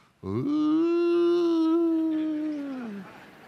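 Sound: voice imitating whale song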